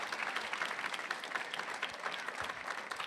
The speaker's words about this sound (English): Thank you all so much. We're going to close out the panel now. Can we give a round of applause to our gracious panel members?